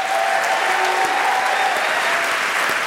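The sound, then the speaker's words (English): A crowd applauds steadily as Nick Kroll is welcomed to Wait Wait Don't Tell Me, a dense wash of many hands clapping at an even, sustained loudness for the full stretch, with no voices standing out. “I'm holding for applause.”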